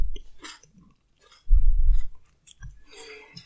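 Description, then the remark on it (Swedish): Wet chewing with crunchy bites, a loud burst of mastication in the middle and softer smacking and crunching around it, no talking. “Men du äter som ett rovdjur.”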